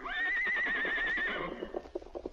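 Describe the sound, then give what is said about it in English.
A horse, Silver, lets out a long, high, quavering whinny lasting over a second, then a quick rhythmic patter of galloping hoofbeats follows and trails off as he runs off beyond the hill, in The Lone Ranger story. “But now, if Silver wants to go, Well, he's been a grand horse.”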